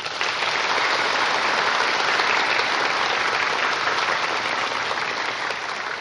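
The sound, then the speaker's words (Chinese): Sustained applause from a large audience of guests welcoming a Buddhist master to give a teaching, a dense, steady clatter of many hands clapping at an even, fairly loud level for about six seconds, with no speech over it. “现在请各位来宾以最热烈的掌声恭请上清下海师父为我们开示。”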